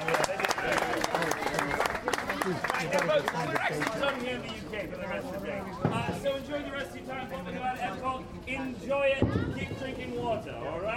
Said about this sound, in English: Ladies and gentlemen, let's have a huge round of applause for the real stars here. Let's hear it from everybody.